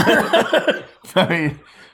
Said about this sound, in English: There's a way to get around the corner. There's, you can like, you know, cough very loudly.